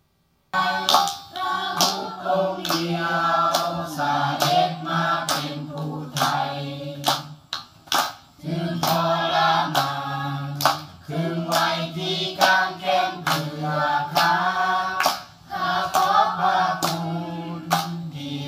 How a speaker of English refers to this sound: And we sit down in that little room that is packed with these believers. And nobody says anything. And they start singing. And as quick as I could get my phone out and hit record, here's what I heard.